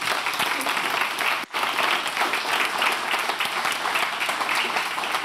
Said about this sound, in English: Please give Nate a big round of applause.